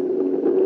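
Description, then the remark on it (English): A plane flying low down Fifth Avenue in New York, under 1,000 feet, past an office window north of the Empire State Building, recorded on a Soundscriber dictation machine; its engines roar in a steady, low-pitched drone that swells slightly toward the end. No one speaks. “And you can hear him on the tape dictating the letter as the sound of the engines get louder and louder and louder as it passes by his office window.”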